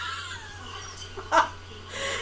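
A single short cat meow rises briefly out of a quiet background with a low steady hum, moderately loud, with no talking.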